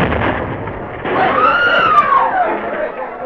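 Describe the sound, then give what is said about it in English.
A loud explosion in an apartment building rumbles and roars steadily for a few seconds, with a thin whistling tone arcing up and down through the noise. No one speaks. “At that moment, in an apartment building on the opposite side of town, the stillness was suddenly shattered by a terrific explosion.”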